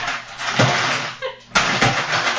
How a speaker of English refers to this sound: While we're waiting, the tajal is served on ice in cocktail glasses. So I'm going to crush some ice here just to make it prettier.